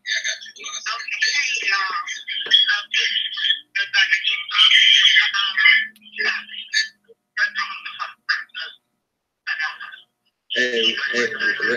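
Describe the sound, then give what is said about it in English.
A caller's voice comes through a thin, tinny phone line that keeps breaking up, with the speech chopping in and out and dropping to silence in short gaps before returning. “your phone breaking out.”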